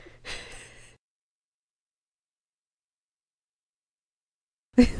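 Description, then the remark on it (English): Heavy breathing by a person into a microphone: a long breathy exhale, then several seconds of silence before another sharp, loud breath bursts in at the end. “Yeah, you're breathing into the mic real bad.”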